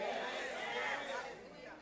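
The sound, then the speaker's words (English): A crowd murmurs together in a steady, overlapping babble of voices, a low chatter of agreement that holds at an even level and fades slightly toward the end. “Oh, this crowd is in agreement with me.”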